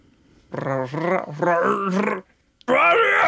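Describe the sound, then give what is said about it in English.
A man's voice imitates a creature's frustrated roar in two drawn-out, growling bursts, loud, followed by a short gap and a third rising growl. “a piece of junk comes flying out of the Falcon's door, accompanied by a roar of frustration”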